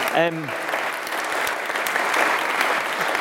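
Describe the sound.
An audience applauds steadily for a few seconds to welcome someone back, a dense, even patter of many hands clapping, with a brief voice sounding at the very start.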